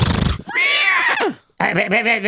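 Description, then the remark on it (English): A horse whinnies loudly, a shrill wavering neigh that falls away, followed after a brief pause by a second, lower and shakier whinny. A short rough burst comes just before it. “But Baruch Hashem, I have two horses.”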